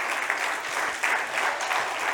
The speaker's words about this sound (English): And I think it'd be worth just honouring. I know the kids team are out in kids church, but the kids and youth team, just some of the work they put in. Maybe we could just honour them by way of applause.